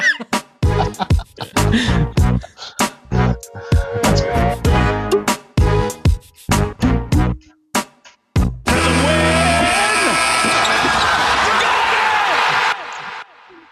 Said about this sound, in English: would you give me that Raptors sting?